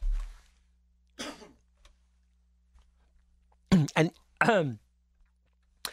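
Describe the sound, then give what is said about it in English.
A person coughs and clears their throat: one rough cough, a pause, then a quick pair of coughs and a longer throat-clearing rasp, with no talking. “I'm picking up where I left off. I just had to cough.”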